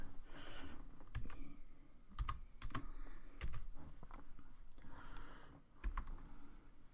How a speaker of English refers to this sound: My desk is kind of too small for my keyboard and my mic in a good position, so I'm kind of moving shit around. I apologize. One second.